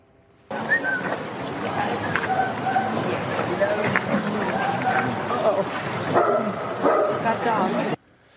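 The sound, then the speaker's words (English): A dog in Ireland barks aggressively at Joe Biden in repeated bursts for several seconds, loud, over a busy background of murmuring voices and outdoor crowd noise. “The dog does not like Joe Biden, was barking at Joe rather viciously, actually.”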